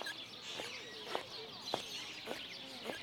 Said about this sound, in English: Did you just hear what I heard? That woman has squeaky shoes.